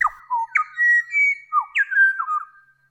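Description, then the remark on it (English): A pied butcherbird calls with a series of clear, fluting whistled notes, swooping down and sliding in pitch, heard alone for about three seconds. “Whereas this? That's a pied butcher bird.”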